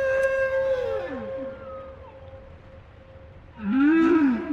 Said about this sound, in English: And it seems like the hit factory producing whales like those of South Australia, their songs gradually over the years leak out into other whale populations and they incorporate them into their repertoires.